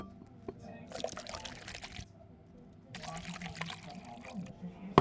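Crown whisky, no ice, glugs into a glass in two short pours about two seconds apart in a nearly empty bar as a customer pours the bartender a drink, fairly soft, with a brief clink and low murmur in between.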